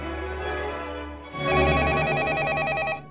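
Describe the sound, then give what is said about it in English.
A telephone rings in a museum with a warbling electronic trill, starting softer and then swelling louder, the tone alternating rapidly in a steady pattern before cutting off. “The phone's ringing, but where is it coming from?”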